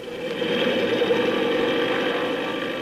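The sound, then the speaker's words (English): A propeller plane's engine drones in a loud, steady roar with a buzzing mid-pitched hum as the plane takes off for reconnaissance, swelling up in the first half-second and then holding constant throughout. “Gee, those propellers sure stir up the wind.”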